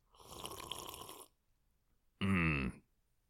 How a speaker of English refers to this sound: With me, as always, is a special guest. An always guest that is still special. That's right, you heard me. It is a small sip of whiskey, and here is what the whiskey sounds like.